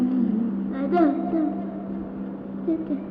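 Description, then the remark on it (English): A voice imitates a motorcycle wheel with a steady, buzzing hum held for about three seconds, its pitch wavering up and down with a couple of brief rises, as the start of a song. “First I have to make a motorcycle wheel sound.”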